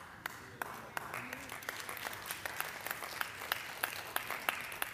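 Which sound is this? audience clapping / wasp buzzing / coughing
audience clapping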